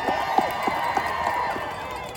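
A crowd at a rally for medical freedom against vaccine passports and mandates applauds and cheers in a steady, dense wash of clapping, with a few sharper claps and voices whooping and calling out over the top at an even volume.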